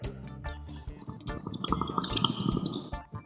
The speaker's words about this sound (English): I'm going to take a bong rip for that glorious victory.